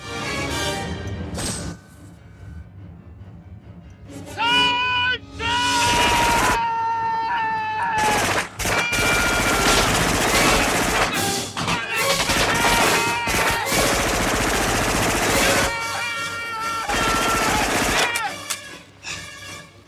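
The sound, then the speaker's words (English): Loud, sustained machine-gun and minigun fire from a crew all shooting in the same general direction into trees: a dense, continuous, overwhelming roar of rapid shots with brief gaps, with shouting voices mixed in. “And then the rest of the crew joins in alongside him, and they all just start shooting their guns in the same general direction.”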